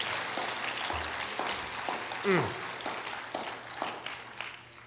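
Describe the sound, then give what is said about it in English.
A church audience claps their hands unto the Lord together in a dense, sustained burst of applause filling the church, with a brief rising vocal exclamation cutting through the middle. “Can you clap your hands unto the Lord?”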